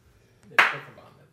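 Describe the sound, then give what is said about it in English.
A single sharp hand clap, made to mark a spot for editing a recording, rings out bright and loud, with a quick decaying tail, over a faint low background hum. “That's me clapping to mark this spot.”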